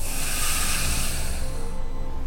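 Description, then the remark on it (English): A loud breath drawn in and out through the mouth during a slow breathing exercise, a steady airy rush lasting a couple of seconds before its hissy edge fades away. No one speaks. “Of course, I just do it through my mouth to make it loud for the mic. Just go in and out.”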